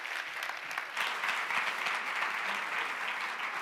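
A crowd applauds steadily, a dense wash of many hands clapping at an even, sustained level throughout, with no voices standing out, welcoming a preacher to come minister.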